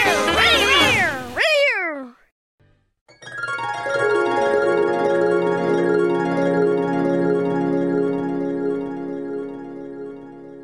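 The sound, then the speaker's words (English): A loud, drawn-out cat meow with a wavering, rising and falling pitch, then a short pause before a long, sustained ringing tone that slowly fades. “Release the cat.”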